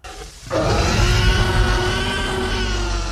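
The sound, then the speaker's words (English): A dinosaur roar bursts in after a brief quieter lead-in and holds for nearly three seconds, loud, harsh and rumbling, with a steady tonal whine running through it. No one speaks. “That one's a very specific roar.”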